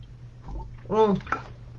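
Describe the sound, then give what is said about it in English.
A single quiet sip of V3 brand water, followed by a brief swallow and a short voiced hum of satisfaction against a low background hum. “So actually, I just wanted to take a sip of water.”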